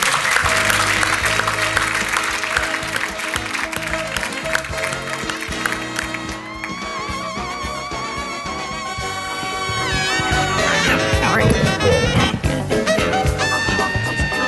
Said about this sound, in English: So a pretty big round of applause.